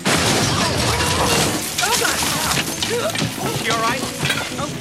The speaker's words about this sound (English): And this person is mad at that person, and that person starts yelling at everyone until a literal car crashes through the house.